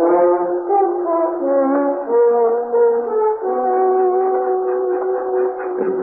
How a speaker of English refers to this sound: The train started. The next stop was Dover, the end of the line.